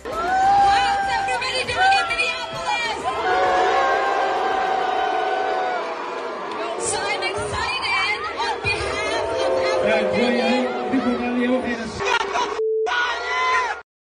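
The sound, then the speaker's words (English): A large Somali audience in Ilhan Omar's district roars with sustained booing, yelling and jeering at her after she said Minnesota is worse than a refugee camp, loud and continuous for about twelve seconds, then breaks off briefly before the noisy crowd resumes. “That was Ilhan Omar in her district in front of a Somali audience getting booed when she said Minnesota is worse than a refugee camp.”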